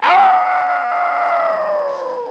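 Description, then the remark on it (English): A person's voice imitates a female dog calling to a male dog from a distance: one long, loud, high-pitched howling wail held for over two seconds, sliding gently downward in pitch, with no other sounds. “The wild girl dog called to the boy dog, at first from a distance, like this.”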